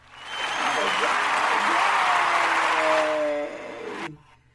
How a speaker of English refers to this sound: That's my hand clap. With a praise and a shout for glory, for the glory of the Lord.